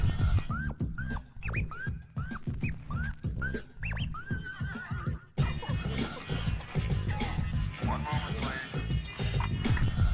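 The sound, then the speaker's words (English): A horse neigh sits inside a dense music track, coming straight after a record scratch, with a few high whinnying calls over heavy bass and beats; after a sharp transition the track turns busier and louder. “Dude, I'm loving that horse neigh.”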